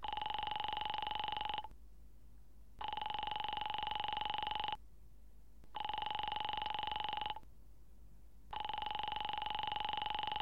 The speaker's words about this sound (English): Ringing Murray Hill 70093.